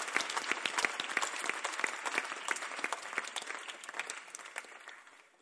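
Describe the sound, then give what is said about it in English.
Steady applause from a group, many hands clapping in a dense, crackling patter that holds for a few seconds and then gradually thins and fades out. No one speaks. “Why are you clapping?”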